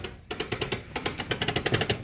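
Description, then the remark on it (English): Winding the big spring of a clockwork musical Christmas tree stand, a box with a metal cup holding the tree, wound like a clock: a fast, steady run of sharp ratcheting clicks, roughly ten per second, with one brief pause early on. No voices. “So it winds up like a clock. It's got a big spring in it.”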